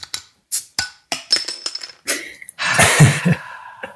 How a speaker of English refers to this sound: This is me opening my Sleeping Lemmings export from the Wild Beer Co.